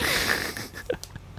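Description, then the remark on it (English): A quick, airy yawn: a breathy rush of air with a faint whining tone that tapers off after about half a second, followed by a few soft mouth clicks and breaths. “I was like, I got time for a sneak a quick yawn in here.”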